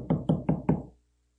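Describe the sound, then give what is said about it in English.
Four firm knocks on a wooden door in quick, even succession, fairly loud, each with a short resonant thud, followed by silence; a corporal banging on the door of a room where a board of sergeants is seated. “I banged on the door.”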